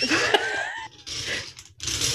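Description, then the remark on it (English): A gritty, grinding crunch as a ball is twisted, coming in three rough bursts separated by brief gaps, with clicky ratchet-like textures running through each turn. “Are you actually like rotating something there, or was it like a really good sound effect? No, so I'm rotating good. A ball.”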